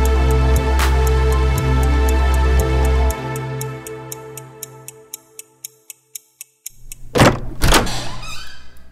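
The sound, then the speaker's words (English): A door opens and shuts with two quick, solid knocks near the end, after a low rumbling hum fades and a steady mechanical ticking clicks along alone. “Yeah, the door just totally opened and closed.”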